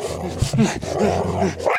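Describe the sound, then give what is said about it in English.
A pit bull named Ginger barks and growls in a continuous run of rough, throaty vocalizing, with a few sharper bark bursts standing out along the way. “We're just a couple of fellas hanging out with a pit bull trying to see who is stronger.”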